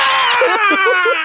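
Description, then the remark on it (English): A loud, sustained, wordless scream, high-pitched and strained, holding one continuous shrill tone for over a second with a slight wavering quality and no recognizable speech. “Screaming. It's not even like words.”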